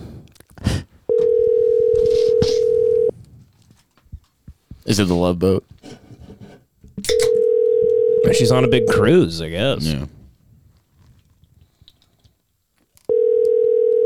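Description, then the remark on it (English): An outgoing phone call rings: a steady, low electronic ringback tone sounds in two-second bursts with long pauses between them, while people chat over the gaps between rings. “Hold on. Let me call her.”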